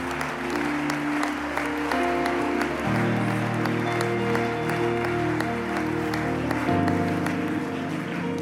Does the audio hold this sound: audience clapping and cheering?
yes